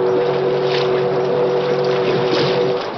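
A deep riverboat whistle on a big paddle-wheel boat out on a river holds one long, steady warning blast, loud, over a rough rumble of engine and water that never lets up.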